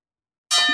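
A fight bell gets a single sharp ding after a moment of silence, ringing out loud and bright with a sustained metallic shimmer that carries to the end.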